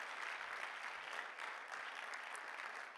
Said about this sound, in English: You can go ahead and clap your hands, because we can be grateful to be a part of that we are grateful.